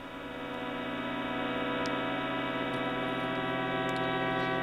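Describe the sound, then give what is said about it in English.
Many steady electronic tones, one from each of the 16 households in one cul-de-sac at 47 Tuck, overlap in a dense, unchanging hum as the cul-de-sac is swept, each holding its own pitch from low to high, with a few faint clicks now and then and no talking. “So you're hearing kind of each household making their own tone, right? And then they kind of overlap while you're getting to the next household.”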